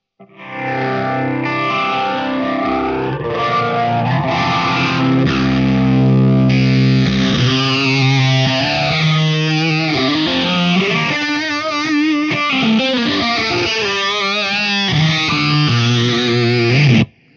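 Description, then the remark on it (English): Electric guitar played through a phaser pedal, its sustained chords and lead notes swept by a slow, whooshing phase sweep that rises and falls. Moderately loud and steady, with no talking. “I think it's like one of the nicest sounding phasers out there.”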